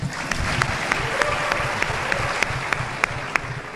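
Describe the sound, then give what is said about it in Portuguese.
An audience claps steadily throughout, a dense wash of applause with sharper individual claps popping out now and then, moderately loud and without any voices; the applause follows the speaker introducing his aide. “Esse é o Vicente, meu assessor. Palmas.”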